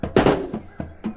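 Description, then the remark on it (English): A die rolled hard during a tabletop game slams onto a tabletop with a loud, sharp crack, then clatters through three softer bounces spaced a fraction of a second apart before settling on a 10. “I got to get a new die. That sounds like a gunshot.”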